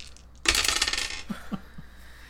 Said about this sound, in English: So, I'll roll for myself first, because, you know, everyone wins with these die. So, I'm gonna roll for myself first. And grab this other dice.